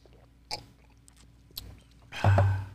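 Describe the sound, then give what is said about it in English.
A quiet mouth sound of someone sipping a Belgian beer, with a couple of soft wet clicks before a short slurping draw, and no talking. “Another sip.”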